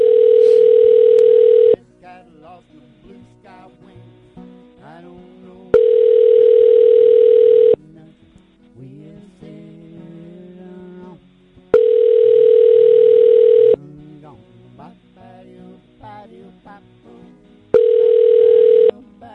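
A telephone ringback tone sounds while a call placed from the UK by Talk Radio connects: a steady, loud buzzing tone repeats four times, each about two seconds long with roughly four-second pauses, and faint voices murmur in the gaps.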